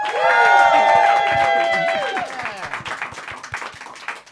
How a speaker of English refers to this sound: Please, everyone, put your hands together. Welcome team captain Stuart Laws. And keep the round of applause going for Hannah Flint.